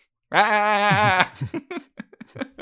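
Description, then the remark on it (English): A person playing Willy the sheep in a role-playing story lets out one loud sheep-like bleat, a wavering, quavering 'baa' lasting about a second, followed by a few brief, quieter bits of talk. “Make a sheep noise.”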